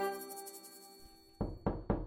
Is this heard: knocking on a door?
yes